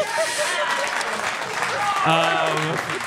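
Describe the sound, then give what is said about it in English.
An audience applauds with dense, steady clapping for about three seconds, joined near the end by a brief tonal cheer or whoop over the noise. “Don't sustain your applause.”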